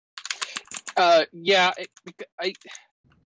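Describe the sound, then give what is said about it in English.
Quick bursts of crisp computer keyboard typing, irregular clicks clustering in short runs, with a couple of brief voiced sounds cutting in between the keystrokes. “Sorry for the typing.”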